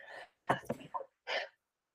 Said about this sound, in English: We're both sneezing here. We're both sneezing. I made you sneeze. I sneeze first.